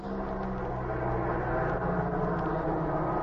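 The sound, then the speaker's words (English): A steady, low droning hum of a distant airplane motor as the plane circles to land into the wind, holding an even level throughout with no voices. “Then, from the distance, came the hum of an airplane motor.”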